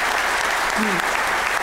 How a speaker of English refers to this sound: It's absolutely fantastic. What an amazing event these guys have put on. So round of applause. Fantastic.